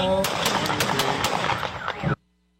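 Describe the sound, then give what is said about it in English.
A rapid string of five loud, sharp gunshots, fired by a police officer from less than four feet away, cracks out over a dense, noisy background, the shots spaced unevenly within two seconds before the sound cuts off abruptly. “And one officer fires 5 rounds from less than 4 feet.”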